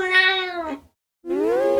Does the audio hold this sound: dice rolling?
no